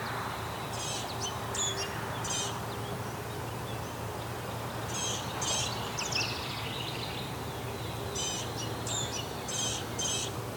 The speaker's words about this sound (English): So there's a house wren here too. It's the first of the year for me. So gnatcatcher on the right. House wren on the left.